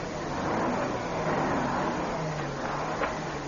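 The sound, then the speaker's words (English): A truck engine rumbles steadily, its low drone rising slightly in pitch as it revs over a few seconds while the truck turns around on a narrow road, with no voices. “I thought a truck couldn't turn around on this narrow road.”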